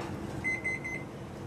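An oven timer goes off in a kitchen while gingerbread bakes, with a quick run of about four high, steady electronic beeps, lasting roughly half a second over a low, soft background rumble.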